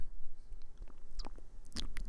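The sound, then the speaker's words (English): A person chews and swallows food wetly into the microphone during a recording, with a few irregular crunchy clicks and smacks over a low steady background. No one speaks. “Swallowing is the worst noise.”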